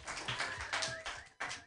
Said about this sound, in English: Everybody clap your hands together